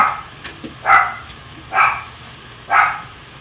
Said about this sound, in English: Hey, Mocha, shut up! Wow. What? My freaking dog keeps on barking.